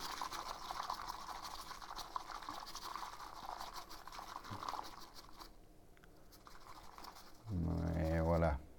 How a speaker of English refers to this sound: And now we do the same here. I want to wash it just a little bit with the water.